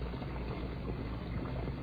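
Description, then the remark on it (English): A steady, continuous rush of bath water pouring into a tub, fairly loud, holding an even level throughout with a dense hissing, splashing texture and no voices. “Well, that ought to be enough water.”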